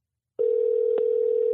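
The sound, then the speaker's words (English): After a brief silence, a steady electronic phone tone starts and holds at an even pitch and level as a call to a listener goes unanswered. A faint click comes partway through, and no one speaks. “I can't even get one person on the phone. How can I not get one person on the phone?”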